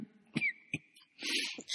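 A person coughs several times: two sharp, separate bursts, then a longer, harsher run of coughing. A thin steady tone hums faintly underneath, and no one speaks.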